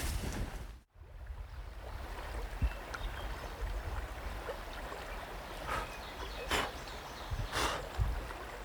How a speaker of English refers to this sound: The good news is I think I can cross the stream pretty easy without getting my feet wet.